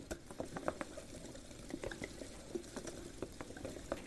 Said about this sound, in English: All of the beautiful bubbles and fizzing.